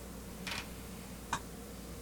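Dice for a Dungeons & Dragons game rattle and clack on a hard surface in two short bursts, a softer scattered clatter followed by a single sharp click, set against a quiet low hum with no voices.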